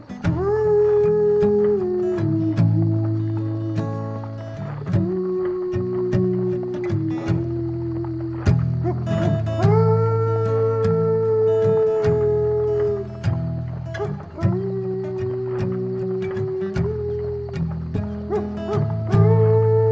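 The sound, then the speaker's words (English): A dog howls in long, wavering, sung-like notes over a steady guitar accompaniment, loud, continuing for the whole stretch with brief pauses between phrases. “but I told you once I had a dream where a dog sang a song to me as we rode on a stagecoach.”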